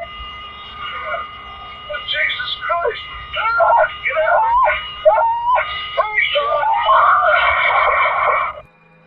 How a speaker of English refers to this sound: Yes, those were grown men screaming in fear as they faced death. And no, it isn't a scene from a movie. That was an actual cockpit recording of the moment an airplane crashed and burst into flames.